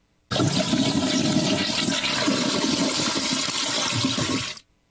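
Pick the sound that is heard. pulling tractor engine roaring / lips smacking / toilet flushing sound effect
toilet flushing sound effect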